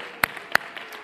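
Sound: audience clapping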